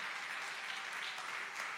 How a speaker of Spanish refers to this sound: Denle fuerte aplauso al Señor con el corazón.